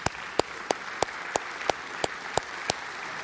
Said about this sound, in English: You guys may be seated. You can clap. Go for it.